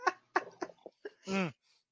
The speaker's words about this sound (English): Oh. Also a dog behind me. Dog and habit trail.